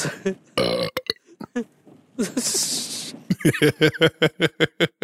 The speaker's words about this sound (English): Burping's funny.